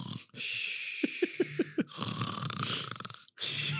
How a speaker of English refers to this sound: started to knit, but was interrupted by the snores coming from the back room.